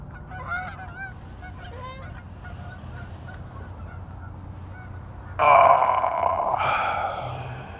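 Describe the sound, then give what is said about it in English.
Geese honk repeatedly, their calls rising into a louder, harsh burst of honking near the end as the flock passes by over a steady low background rumble. “I'm sure y'all heard the geese floating by.”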